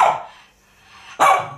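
A dog barks twice, loud, each bark a sharp burst about a second apart with a quiet gap between them. No one speaks.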